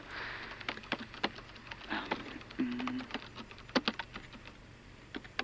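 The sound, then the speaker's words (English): Irregular bursts of keystrokes clatter on a computer keyboard, quick taps with short pauses between them, plus a brief low hum partway through. No one speaks. “You know how to work a keyboard, so you're already better than most of them.”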